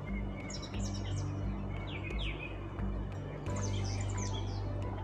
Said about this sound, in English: Enjoy the birds.